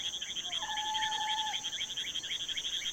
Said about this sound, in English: Picture yourself in the Amazonian forest in Suriname. The weather is hot. The air is moist.